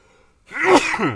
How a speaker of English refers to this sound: Uh-oh. Here we go. I think I got to sneeze.